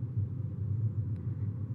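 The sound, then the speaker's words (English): Steady low engine and road rumble from inside a car creeping along in slow highway traffic in Texas at about 5 miles per hour, a continuous droning hum with a faint brief tick partway through. “Moving a little faster now, about 5 miles per hour.”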